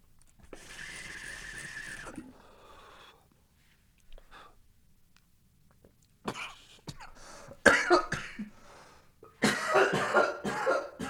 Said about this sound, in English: Holy crap. Holy crap. Coughing mostly from the amount of flavor on that papaya.